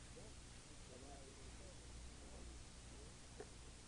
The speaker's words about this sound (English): there's a slight hum.